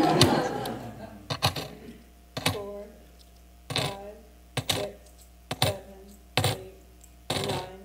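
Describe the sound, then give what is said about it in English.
Silver coins clink down one at a time as they are counted, about eight bright metallic taps with short ringing tails, spaced at a steady, unhurried counting pace. “Suppose a woman has 10 silver coins. Yep, you can count them.”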